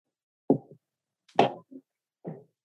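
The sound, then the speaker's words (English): A dog barks a few times, short sharp woofs at uneven intervals with brief pauses between them, moderately loud, with no one talking. “Sorry, my dog was barking.”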